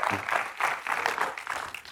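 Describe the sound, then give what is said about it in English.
A crowd claps their hands to the Lord together in a dense, steady burst of applause lasting the whole moment, at moderate volume and with no one speaking. “All right, clap your hands to the Lord tonight if you receive that.”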